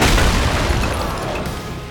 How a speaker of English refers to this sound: He swung his fist into the granite, shattering the council's table.